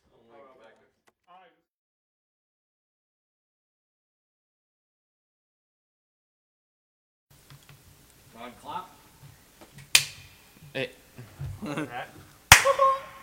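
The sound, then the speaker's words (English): After a stretch of near silence, people talk during the improv show Improv Storyteller while a few sharp, loud claps ring out at scattered, irregular moments rather than in a steady round of applause. “Everyone was clapping at different points, so I was like, got it.”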